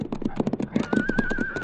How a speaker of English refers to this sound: Hey, wait, listen. Yeah, it's a horse. Oh. Must be over at the edge of that ridge.